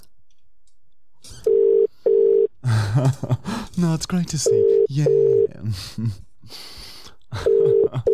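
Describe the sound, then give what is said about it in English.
A telephone ringback tone on an outgoing call to a cleaning service, sounding in repeated double pulses, steady and clear, with people talking between the rings. “All right, here we go. It's ringing.”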